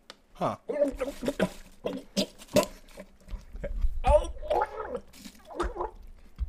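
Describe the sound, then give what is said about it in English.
Wet gulping and gurgling as a man drinks a bottle of water while reading an email aloud, his muffled, garbled voice breaking through between swallows in uneven bursts, with a low bubbling rumble toward the end. “This next this next email here is from username guy drinking a bottle of water while he reads you an email to a podcast.”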